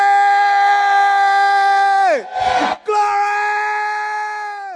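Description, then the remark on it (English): An audience shouts glory to Jesus loudly together in long, sustained cries that sag in pitch, break for a burst of noisy cheering midway, then swell again before trailing off. “Give Jesus a big shout. Shout glory!”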